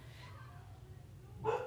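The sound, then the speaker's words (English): A dog lets out a single short bark near the end, muffled, over a low steady background hum. “If you hear children or a dog having fun, they're not ours.”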